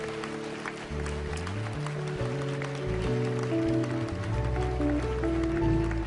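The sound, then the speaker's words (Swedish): A crowd at a tent meeting claps steadily and continuously for Jesus over loud sustained keyboard chords that shift in pitch, the applause forming a dense, crackling wash beneath the music for the whole stretch. “Ska vi ge Jesus en riktig applåd för det här?”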